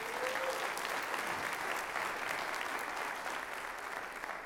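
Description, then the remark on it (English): A crowd gives the Lord a round of applause during a sermon on prayer, a dense wash of clapping hands that holds an even loudness for the full few seconds with no voices standing out. “Now give the Lord a round of applause on that one.”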